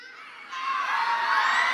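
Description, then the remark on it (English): A crowd of people who have been on certain teams screams and shouts together when called on, loud and sustained, swelling louder after a moment and holding as a continuous roar of cheering. “Just scream out real loud.”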